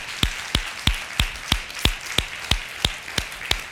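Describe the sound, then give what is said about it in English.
A crowd claps hands for Jesus in a steady, even rhythm, roughly three sharp claps per second, about a dozen in all, with no one speaking over it. “Would you clap your hands one more time for Jesus today?”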